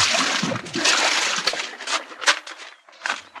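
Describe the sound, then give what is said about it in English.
Water sloshes and splashes in a steady series of wet bursts, like someone wading heavily out of shallow water to get dry. Moderately loud, with no talking. “Well, let's get out of this water and get dry.”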